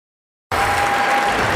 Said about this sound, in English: You just heard the bells.